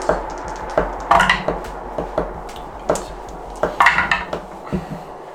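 Dice rattle and clatter across a hard surface in a string of sharp, irregular clicks, with two busier bursts of tumbling knocks amid scattered single taps. No one speaks.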